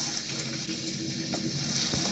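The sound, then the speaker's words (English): A sand pouring sound effect of sand coming out from a door: a steady, continuous hissing rush of grains that holds at an even loudness for the whole stretch, with faint low rumbling underneath and no voices. “He sees sand coming out from the door.”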